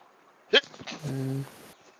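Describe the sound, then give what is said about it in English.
A single sneeze: a sharp, explosive burst followed by a brief voiced, tonal tail that fades out, heard on its own with no talking. “Bless you.”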